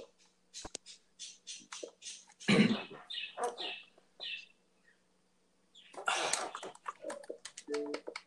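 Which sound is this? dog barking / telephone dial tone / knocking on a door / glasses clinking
dog barking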